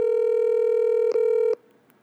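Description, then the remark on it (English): An outgoing phone call to a developer rings on the line: a single steady electronic ringback tone holds for about a second and a half, then cuts off into quiet line hiss. “I'm even more excited if he answers the phone.”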